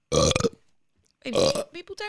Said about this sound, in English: People don't want to hear you burp. So I edited it out.